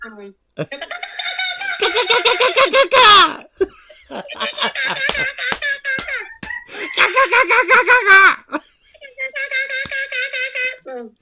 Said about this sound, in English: The guinea hens are talking to us.